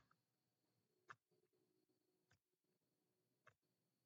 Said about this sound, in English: All right, that's my clock. Tick-tock.